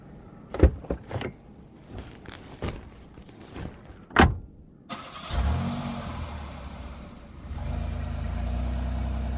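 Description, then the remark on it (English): A few sharp clunks and a whirring window, then a car engine turns over and settles into a steady low rumble that swells slightly as it pulls away, fairly loud, with no talking. “We pulled into Denny's parking lot”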